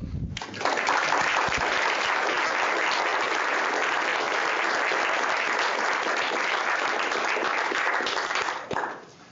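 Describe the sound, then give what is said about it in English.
An audience at a scientific talk applauds the study's researchers, seated about four rows back, a dense wash of many hands clapping at a constant loud level for about eight seconds before it quickly dies away. “So I think any applause today should go to the people who did the work, and they're sitting about four rows back.”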